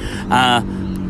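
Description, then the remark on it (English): A motorbike roars past in a short, loud burst of buzzing engine noise with a bright harmonic whine, lasting well under a second over a low, steady background rumble. “Excuse me, there's a motorbike.”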